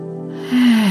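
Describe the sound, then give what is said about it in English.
A breathy rush of air swells up halfway through, a deep breath in through the nose, over a soft steady tone that dips slightly lower as the breath grows louder. “And one more time, breathing in.”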